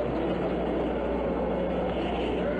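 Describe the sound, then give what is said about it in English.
A deep, continuous roar of the Apollo 11 rocket engines at liftoff, a dense rumbling wall of noise that holds steady and loud throughout with no voices over it. “All engine running. Liftoff. We have a liftoff.”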